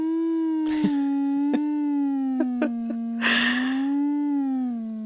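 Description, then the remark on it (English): A steady, sustained electronic tone generated by a sound-frequency app hums continuously for several seconds at a fairly low pitch, wavering slightly, with a few brief breathy noises and clicks passing over it. “I found an app that creates sounds.”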